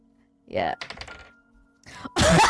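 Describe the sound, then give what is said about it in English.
A quick rattle of small hard clicks as a physical die is rolled, tumbling and settling on a tabletop, for a strength saving throw instead of rolling in Roll 20, with brief bits of voice before it and a burst of noise after. “You can use a physical dice.”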